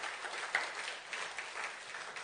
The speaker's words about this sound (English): So I just want to thank you guys. Let's give our staff a round of applause for that.